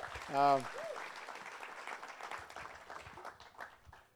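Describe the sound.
A crowd applauds steadily throughout, a dense, even wash of clapping, with one loud voice whooping in a short cheer at the very start.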